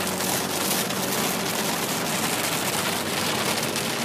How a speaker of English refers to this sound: I'm driving into a pretty big thunderstorm, so I might have to start shouting into the mic over the rain.